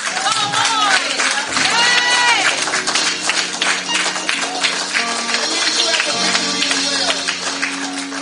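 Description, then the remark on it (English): An audience claps in a dense, loud, steady wash of applause, with raised voices calling out and a sustained low musical tone beneath, continuing throughout. “Oh, you better clap.”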